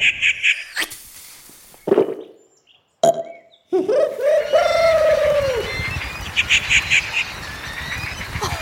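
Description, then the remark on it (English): A rufous treepie, a member of the crow family, calls loudly, mixing bursts of harsh chattering with a couple of drawn-out, fluty notes, separated by brief pauses against a steady background hiss. “You know, the rufous treepie is part of the crow family and lives in South and Southeast Asia.”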